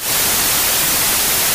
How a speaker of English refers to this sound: That's why some people run a fan in their bedroom, right? Yeah. Here's what white noise sounds like, by the way.